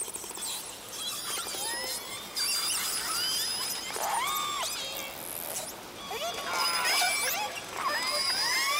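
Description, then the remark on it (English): Calls of J, K and L orca pods, some 98 whales gathered south of Stewart Island, recorded by Ken Balcomb with a hydrophone from his boat in pitch darkness one night in 1995. Many overlapping high squeals and rising, falling whistles chatter continuously over a steady underwater hiss, with several voices calling at once. “Ken writes that there were plenty of salmon, and the gathering seemed very social, with whales chattering to each other as if they were having a party.”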